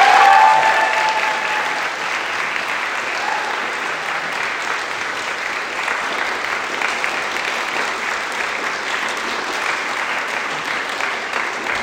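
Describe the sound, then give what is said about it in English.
A large audience claps steadily for about twelve seconds in thanks to the helpers who made lunch possible, a dense, even wash of applause that starts strongest and holds at a fairly constant level without any speech over it. “So I think we should give them a wild round of applause.”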